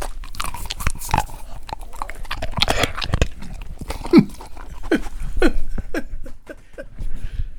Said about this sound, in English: Here, we're going to do a live sound of Nilly eating a dog biscuit. You want a biscuit?